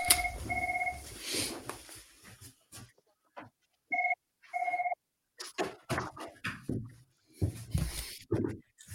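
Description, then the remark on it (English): A telephone rings in two short double-trill bursts, separated by a few seconds, clear, with scattered clattering and handling noises around and after the rings as the phone is unplugged. “Sorry, I just got to unplug my phone.”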